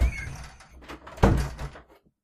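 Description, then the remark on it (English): A door slides and shuts with a solid thud, a brief rumbling scrape followed by a firm close, with no one speaking. “It's a good thing I'm in arm's reach of my door.”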